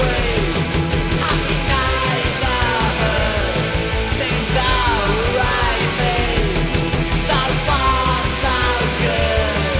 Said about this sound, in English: And we're going to hear some shouting now.